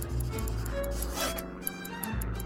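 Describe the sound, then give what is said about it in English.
A pencil scribbles across notepad paper in quick, continuous scratchy strokes, a soft rasping rub that runs for a couple of seconds with no voices. A pilot is writing down sums during a flight to work out her position and remaining distance. “With one eye on the treetops and the other on her paper, she began to scribble down sums to figure out exactly where she was and how far she had left to go.”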